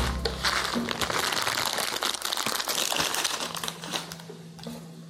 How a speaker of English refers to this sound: It's time to open that package of ramen.